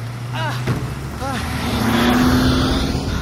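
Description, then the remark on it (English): A car engine drones steadily, its pitch rising slightly, while brief voices cut in over the moving vehicle's rumble. “Stop the car!”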